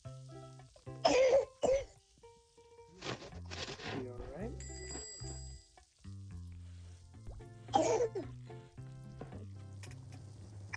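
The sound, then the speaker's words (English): Two loud, abrupt sneezes burst out several seconds apart, with people talking in the background between and after them. “Bless you”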